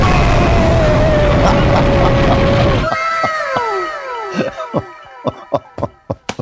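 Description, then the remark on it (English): A loud, sustained scream sound effect over harsh noise lasts about three seconds, then cuts to a run of descending whistling sweeps and a series of sharp, quickening knocks. “Where's my scream?”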